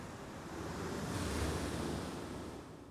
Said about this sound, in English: I went by myself, and the house was on the edge of the sand. So I could hear the waves, you know. Mm-hmm. So I brought the equipment, plugged it into the wall, put a microphone outside of the window, and that's the ocean that you hear in that album.